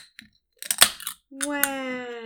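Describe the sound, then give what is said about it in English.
A few faint clicks, then a short burst of crackly, crunchy fizzing from a fizzy treat, followed by a steady, sustained hummed voice tone. “Well, while you're doing that, we're going to pause for some ASMR fizz.”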